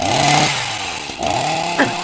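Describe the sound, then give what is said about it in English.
A chainsaw runs loud, its engine whining and bogging as it cuts ice out so a moose can get its footing, pitch dipping and rising again in two strained surges over about two seconds. “Number one, a chainsaw. That's them chainsawing the ice out so the moose can get his footing.”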